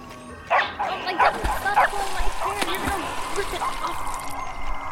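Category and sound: animal, dogs barking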